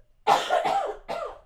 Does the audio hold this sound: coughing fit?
yes